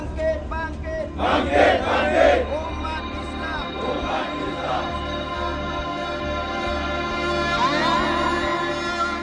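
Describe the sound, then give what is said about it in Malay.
Dozens of Islamic activists chant slogans to defend the faith together in loud, rhythmic bursts of raised voices, pausing briefly between shouts, over a steady low rumble that runs throughout. “Laungan pertahankan akidah.”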